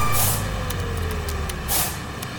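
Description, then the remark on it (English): An alarm sound effect going off as a code is typed in: two loud, hissing blasts about a second and a half apart over a steady low mechanical hum and a faint sustained tone, with no talking. “As you're typing it in, trying not to mess it up, there's like an alarm, like a...”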